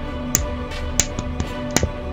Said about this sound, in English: General Tutkhan made slight noises for four of his top king's guards to understand what to do and to proceed by notifying the one inside the Clayton hut of their arrival. They knocked on the door.